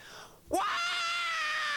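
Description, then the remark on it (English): After a brief hush, a loud, raw screamed vocal from a rock song bursts in, sliding up in pitch and then holding a strained, gritty note steadily until the end. “That was a pretty rough yell, but.”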